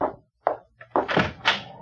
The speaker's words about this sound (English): Caesar, open the door! We have guests!